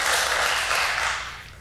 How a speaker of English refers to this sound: I just spent all weekend in College Station at the annual conference for the Global Methodist Church, where I was ordained first a deacon and then an elder. And so, yeah, you can clap for that.